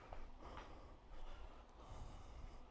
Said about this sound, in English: It's mind-blowing when you start breathing deep, like this awareness that starts waking up inside of you.